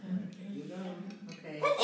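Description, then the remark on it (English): A sudden, loud sneeze bursts out at the very end, right after a stretch of voiced, murmuring vocal sounds. “Okay. Bless you.”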